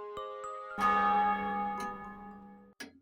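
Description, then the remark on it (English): A single deep church bell strikes once, tolling one o'clock, loud, its rich ringing tone hanging and slowly fading, with a few soft knocks and clicks around it. “Scrooge went to bed again and lay in this state until the chime had gone 3/4 more, when he remembered that Marley had warned him of a visitation when the bell tolled 1.”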